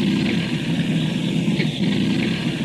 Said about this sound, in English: An engine has quit. Pilot says no danger.